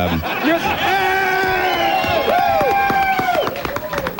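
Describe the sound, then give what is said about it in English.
An audience applauds steadily, with scattered hand claps mixed with loud sustained cheering and whooping voices, all continuous for a few seconds. “Wait a minute, all that applause, I lost my concentration.”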